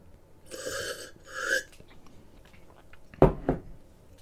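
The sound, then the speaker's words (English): Someone sips a glass of Normandy Calvados: two soft slurping draws, then a pause and two quick, sharp swallowing gulps, with no talking. “I'm just having a sip of Normandy Calvados.”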